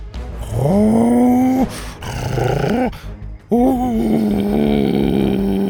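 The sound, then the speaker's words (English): A voice imitates a low, menacing growl in three drawn-out, loud rumbles, each rising in pitch then holding steady, separated by brief pauses. “His low growl now sounded psychotic.”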